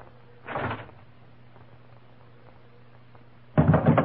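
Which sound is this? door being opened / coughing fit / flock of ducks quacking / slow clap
door being opened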